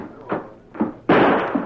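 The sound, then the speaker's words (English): Two quick, muffled thumps, then a loud sharp gunshot fired through a window at a masked man, its harsh crackling blast hanging for about half a second before fading. “Deke shot at the masked fella. He must have shot through the window.”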